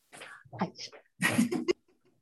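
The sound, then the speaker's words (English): A single fairly loud sneeze: a rising voiced intake, a short pause, then a sharp, noisy burst that cuts off abruptly, followed by near silence. “Oh, I did. Oh, bless you.”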